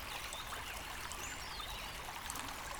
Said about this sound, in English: Let's just stop here for a moment and listen to the sound of the stream, the birds, and the gentle breath of the air.